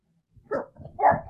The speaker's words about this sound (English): See, my dog is barking because he's like, these motherfuckers are boring.